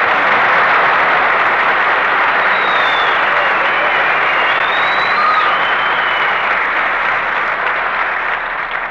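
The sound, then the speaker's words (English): Sustained applause from a crowd fills the whole stretch, a dense, steady wash of many hands clapping at even loudness, with a few faint whistles rising above it. “stop applauding.”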